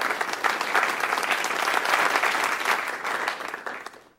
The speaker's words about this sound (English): It was applause. Thank you. I know it was applause. I know it was applause.